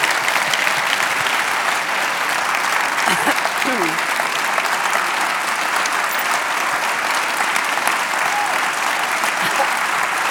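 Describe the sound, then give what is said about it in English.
Sustained, steady applause from a large full-house audience, a dense wash of clapping at an even loudness for about ten seconds, with faint voices briefly audible in the mix. “That applause is probably more than I've ever had at the end of a play.”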